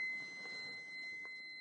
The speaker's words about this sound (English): What's that? Do you hear that? Some kind of alarm going off in my house.